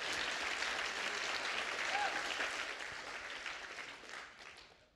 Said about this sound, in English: Somebody clap your hands like you hear what I'm talking about.